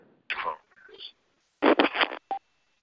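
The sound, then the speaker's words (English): Garbled, breaking-up voice over a phone line, cutting in and out in short bursts with dropouts and brief tonal blips between fragments. “Your signal is very bad. You're very choppy.”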